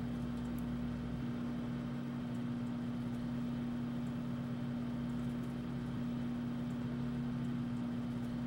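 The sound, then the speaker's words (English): A microwave oven hums steadily, a constant low electrical drone with a mechanical whir that holds an even level throughout, with no voices. “I love waiting for the microwave to be done.”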